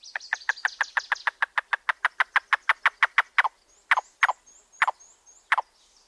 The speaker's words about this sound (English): This staccato call tells us there's a yellow-billed cuckoo nearby, one of two species of cuckoos in the woodlands of North America.